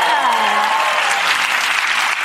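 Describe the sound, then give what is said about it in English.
A crowd breaks into loud, steady applause, dense clapping from start to finish, with a faint voice briefly audible at the beginning. “Clap, you trained sheep.”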